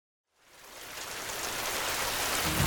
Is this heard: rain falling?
yes